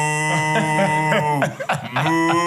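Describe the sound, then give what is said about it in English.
A person imitates a cow with a long, drawn-out "moo," a steady, buzzy low hum held for a couple of seconds and briefly wavering midway. It is fairly loud. “You hear noise in the back. Moo.”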